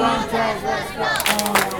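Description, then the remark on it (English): A crowd in an auditorium cheers on robots at a robot competition, shouting loudly and steadily, many voices overlapping in excited yells with a few sharp bursts of noise near the end. “So we're using the robot to do complete some missions, and we had to cheer so we can help them get the enthusiastic so they can do it better.”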